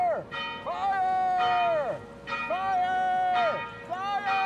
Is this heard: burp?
no